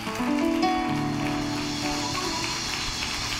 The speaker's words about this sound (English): Thank you. So give yourself a hand clap tonight.